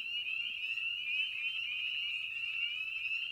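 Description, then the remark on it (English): A dense chorus of spring peeper frogs (Pseudacris crucifer) at a pond at night under moonlight, countless high, shrill peeps blending into a steady continuous trill that holds at an even loudness throughout, with no talking. “The chorus of peeps you're hearing come from, and I hope you're sitting down because I'm going to attempt some Latin here, Pseudocris crucifer, commonly known as the spring peeper.”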